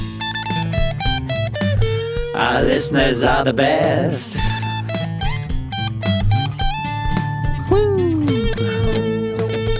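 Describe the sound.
A loud electric guitar solo wails with sustained, bending notes and quick runs over a steady backing, while a person briefly speaks over the music.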